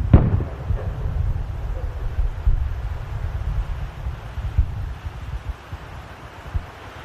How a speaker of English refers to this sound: Hear how intense it is? Big guns. Big guns right up to the very last second. And you'll hear them fade down, and you'll hear some rifle shots.